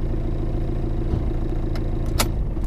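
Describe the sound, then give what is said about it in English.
A car engine runs at a low, steady idle as the vehicle pulls in to park by the Lincoln Memorial, a constant rumble broken by a couple of brief, sharp clicks near the end. No one speaks. “Now park by the Lincoln Memorial.”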